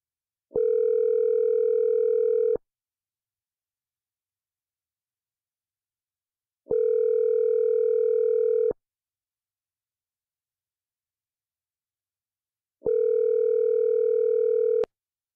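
A telephone ringing tone of a call to a ghost hunter sounds three times, each steady electronic burst about two seconds long with roughly four seconds of silence between them, clear with no voices.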